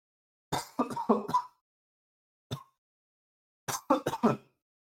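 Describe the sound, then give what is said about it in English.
A sneezing fit: a quick cluster of sharp, explosive bursts, a single sneeze after a pause, then another rapid cluster. Nobody speaks. “I'm gonna have to edit that out. Nope, it's in there. Wow. Okay. God bless.”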